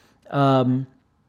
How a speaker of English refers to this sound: But did you guys hear that? That was Jonko meowing in the background. Jonko looking for attention.